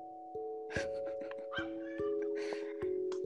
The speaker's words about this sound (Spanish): Espero no estén escuchando mis perros. Sí, y le hace, güey, ese ambiente para el podcast. Arre, arre. Simón, es música de fondo.